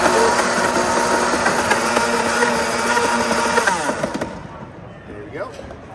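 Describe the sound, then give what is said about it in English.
A loud, harsh motor whine from a powerful Blendtec commercial blender grinds and rattles against a Bionic rubber dog toy, made of medical-grade polymer, for about four seconds, then cuts off and winds down, leaving quieter background noise. “This is a commercial blender, the Blend Tech, and the answer is, or the question is, will it blend?”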